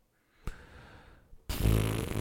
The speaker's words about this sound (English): Farts.